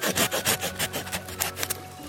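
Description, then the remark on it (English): A Japanese-style saw blade, which cuts on both the push and the pull, cutting through a tree limb with about a dozen quick, evenly spaced rasping strokes in a steady back-and-forth rhythm. There is no talking. “By the way, if this is a big limb, you want to notch below here first so the bark doesn't strip down this way as it drops.”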